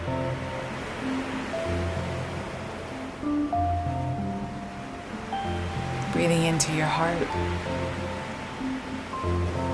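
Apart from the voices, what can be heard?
ocean waves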